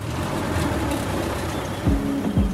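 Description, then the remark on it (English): A rough, rumbling engine drones steadily as an antique 1964 Dodge Power Wagon truck drives along a red dirt road in Bolivia, with low mechanical growls and a couple of brief tonal whines near the end, no voices present. “So we hop in his antique truck, a 1964 Dodge Power Wagon, classic and indestructible.”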